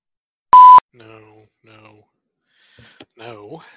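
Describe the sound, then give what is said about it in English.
A sharp, loud electronic beep, then a voice doing flat, monotone robot-style beeping sounds in short bursts, ending with a more wavering vocal sound. “Beep. I am a robot. Beep. Beep.”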